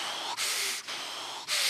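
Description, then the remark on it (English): A voice imitates heavy, angry breathing while driving right behind another car in traffic: four loud, harsh airy huffs in quick succession, each a forceful rush of breath separated by short gaps, with no words. “And Cheryl can hear me breathing.”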